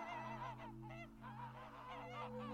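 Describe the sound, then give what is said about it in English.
A flock of geese, set off by a horn honk, honks loudly and continuously, their overlapping calls rising and falling over a steady low droning tone, with no one speaking. “A nearby kestrel cuts you up, so you honk your horn, which sets off all the geese.”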